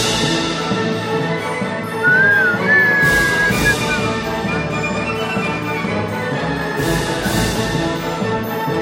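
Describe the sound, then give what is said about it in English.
A short whistle slides up in pitch and then holds steady for about a second and a half, clearly audible over a dense, busy musical background. “Man, so dude, you always bring in that early whistle.”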